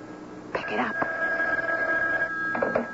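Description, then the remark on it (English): A telephone rings with a steady, high, sustained tone lasting about two seconds, while brief voice sounds break in at the start and end. “Saved by the bell. Don't count on it. Go ahead, pick it up, Sam.”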